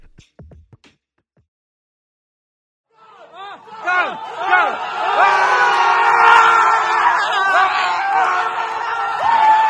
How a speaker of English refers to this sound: This is 2023 World Basketball Classic in Hong Kong House, London. All Taiwanese gather here to cheer for the Chinese Taipei basketball team. Crazy, huh?